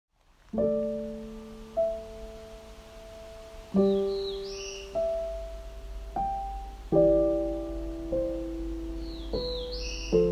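black-throated blue warbler song

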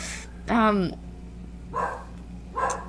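excited dog barking

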